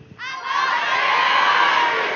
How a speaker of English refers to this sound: And I can hear your cheers and I can hear your clapping.